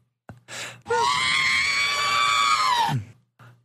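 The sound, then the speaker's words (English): A voice imitates R2-D2's droid beeps from the throat instead of whistling: one long, loud, strained squeal held for about two seconds, opening with a quick chirp and dropping off at the end after short breathy bursts. “Wants us to do our best impressions of our favorite R2-D2 sounds.”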